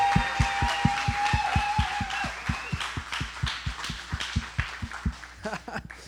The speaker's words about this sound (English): But on the count of three, I just want you to give some applause. Here we go. 1, 2, 3. Give the applause. Woo!